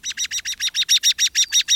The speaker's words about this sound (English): These bobolinks we're hearing orient themselves to Earth's magnetic north with the help of iron-rich magnetic crystals inside their upper beaks.